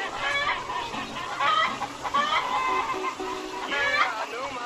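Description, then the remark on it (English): Several long-legged Rhode Island Red chickens cluck and squawk continuously in overlapping bursts, a busy flock chattering throughout. “Got them nice, long-legged, Rhode Island Red chickens.”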